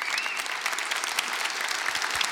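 Steady applause from an audience clapping for the room after raising hands for business growth from 2016 to 2017, many hands clapping in a dense, continuous patter at an even loudness throughout, with no voices standing out.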